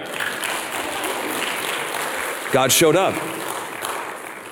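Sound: audience applauding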